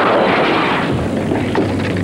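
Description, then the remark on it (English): Jay Leno smashes a sledgehammer into a car with a baby on board sign, with loud, harsh crashing, a dense burst of impact noise followed by a second sharp blow about a second later. No one speaks. “If you have a baby on board sign on your car, Jay Leno will come at your car with a sledgehammer just to make sure the baby's okay.”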